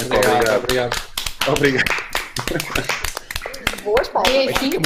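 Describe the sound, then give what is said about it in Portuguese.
Scattered claps, a round of applause for a YouTube reaction duo, ring out in quick, uneven bursts while people talk over them, the sharp hand smacks sitting just under the steady chatter for the whole stretch. “e então uma salva de palmas para os Primos!”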